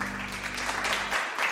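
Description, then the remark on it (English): A small, scattered patter of hand claps from about five people at the front of an audience, lasting about a second and a half, with a low steady hum underneath that cuts out shortly before the end. “Well, thank you to the five of you at the front there who clapped for me.”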